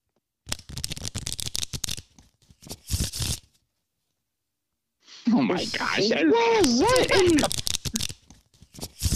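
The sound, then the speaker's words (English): A deck of cards is riffle-shuffled, a rapid papery flutter in two quick bursts, followed after a pause by a person exclaiming and talking excitedly. “You're shuffling a deck of cards.”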